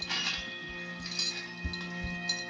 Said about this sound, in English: This always pissed me off the way he fumbles with those keys. Get it together.